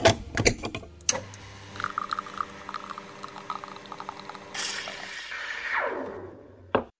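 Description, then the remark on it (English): An espresso machine brews: a few sharp clicks, then a steady buzzing pump hum, a loud hiss of steam and liquid, a falling whine, and a final clunk. No one speaks. “And with that, let's head over to the espresso machine as it's time to brew up another leadership espresso shot.”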